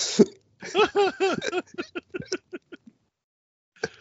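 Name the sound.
cough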